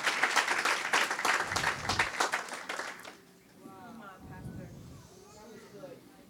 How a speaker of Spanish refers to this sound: Ese aplauso está medio. Parece que están aplaudiendo las mujeres nada más. It seems like only the women are applauding.